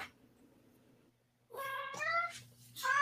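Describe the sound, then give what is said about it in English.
A male cat meows insistently, two or three drawn-out, wavering cries following a brief quiet stretch, with a low steady hum running underneath. “If I don't pick the cat up, he's going to cry through the rest of this podcast.”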